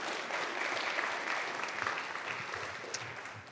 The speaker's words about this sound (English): Clap for me.